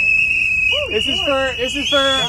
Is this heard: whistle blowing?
yes